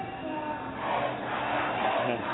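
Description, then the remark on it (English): A dense, continuous roar of a large protest crowd in Tahrir Square, Cairo, Egypt, heard from above, many voices blending into a steady wash that swells slightly louder partway through as the crowd grows, with no single speaker standing out. “We're above Tahrir Square, where the crowd is getting larger and louder earlier than normal today.”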